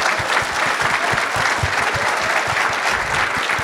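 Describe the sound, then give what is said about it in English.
A crowd applauds steadily for accessibility and the voice control announcement, a dense, loud wash of many hands clapping with no pauses and no voices. “I mean, let's give a round of applause for accessibility.”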